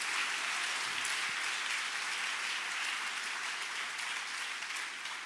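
An audience claps together in a dense, steady wash of applause that holds at an even, fairly loud level for about five seconds, with no voices breaking through.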